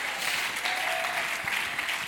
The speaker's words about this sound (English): Come on, clap your hands and shout and praise him. Hallelujah.